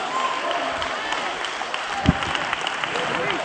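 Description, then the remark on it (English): An audience at church claps hands in a dense, continuous patter that holds steady throughout, with indistinct voices mixed underneath and a single low thump partway through. “Wherever you're sitting, you ought to be clapping your hands and saying, yes, Lord, yes, Lord.”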